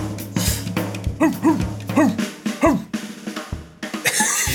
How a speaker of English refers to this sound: It's just puppies with watermelon.